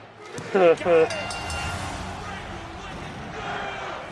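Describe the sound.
A crowd at an event lets out a short, loud burst of Colonel Sanders chants, then settles into a steady, diffuse murmur of many people.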